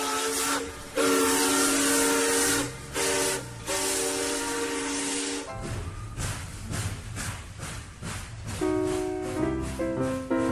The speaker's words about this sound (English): The car comes to a stop on a bridge. A train speeds along its tracks underneath.